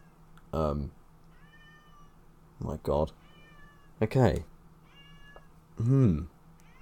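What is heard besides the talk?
cat meowing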